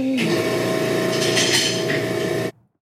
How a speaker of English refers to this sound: Well, that machine is the vacuum that is used to suck the baby out of the womb, ripping him apart in the process. The sound of the vacuum is eerie for the obvious reasons that it's being used to murder a child.